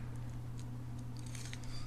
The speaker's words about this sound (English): He's Googling it. You can hear him typing furiously.